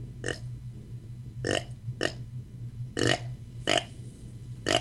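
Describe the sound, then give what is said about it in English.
A series of six short, soft, throaty deer contact grunts made on an original Mad Grunt Snort Wheeze grunt call, spaced irregularly about a second apart, each a brief buzzy burst over a low steady hum. “And that's just a real soft grunt.”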